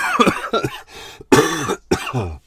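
A run of about five harsh, throaty coughs in quick succession, fairly loud, with a raspy, voiced edge and brief gaps between bursts.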